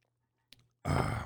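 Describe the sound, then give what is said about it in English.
A brief, soft sip of Seattle's Best coffee, then a loud, breathy exhale of satisfaction. There is no talking, just low background hum. “Let me take a sip of this coffee.”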